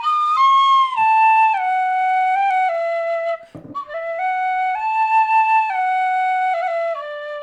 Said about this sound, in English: Fuck these penny whistles! And everything that looks like the penny whistles! Fucking useless instruments!